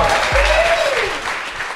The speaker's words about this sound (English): Mate, clap that. Keep that clap going.